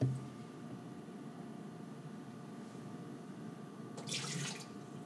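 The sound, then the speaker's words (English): Water is poured from a measuring cup in a steady trickle to measure out 1/3 cup for a batter, then briefly gushes louder and splashier near the end. No one speaks. “So you just hear me pouring water out of my measuring cup.”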